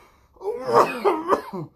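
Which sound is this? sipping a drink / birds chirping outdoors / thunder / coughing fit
coughing fit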